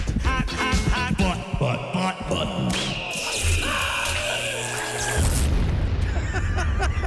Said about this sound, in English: Is there an eagle screaming in there? Yes. Did I hear that? Of course there is.